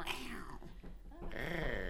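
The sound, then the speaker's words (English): A voice makes a strained, growly imitation of a cat's meow, fairly loud, with a rough start, a brief dip, then a drawn-out wavering tone to the end. “Can't even do a catty noise because you hate it that much.”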